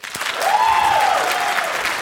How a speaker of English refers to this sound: Let's hear the applause.